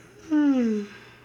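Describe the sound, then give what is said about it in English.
A single drawn-out, sleepy yawn, voiced and sliding downward in pitch for about half a second, fairly loud, with no talking around it. “Got a little sleepy yawn in there.”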